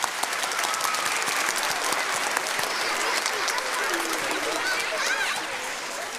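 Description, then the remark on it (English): An audience at a school event claps steadily and loudly for about six seconds to thank the school staff and volunteers, a dense, even wash of applause that fades slightly at the end. “Can we just give them a quick round of applause, please?”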